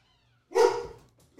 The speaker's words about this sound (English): Yeah, this is crazy. My dog's going nuts. It's probably a package.